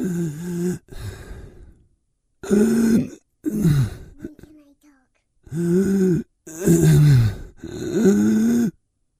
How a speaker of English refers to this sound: I have to do the breathing. Let me do the breathing.